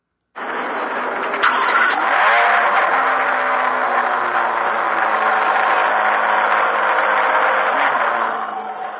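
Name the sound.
car engine starting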